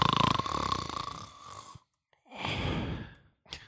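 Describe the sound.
A person fakes snoring: a long, loud rasping snore, a short pause, then a second drawn-out snore, ending with a brief breathy catch.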